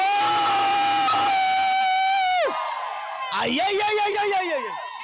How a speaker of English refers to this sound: Now, give the Lord a shout.